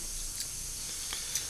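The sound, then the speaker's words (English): A beer can with a widget, which activates when the can is opened, hisses open: a steady, fairly quiet fizzing hiss runs throughout, broken by a few faint clicks and crackles, with no voices. “It activates when you open the can, so we're on now.”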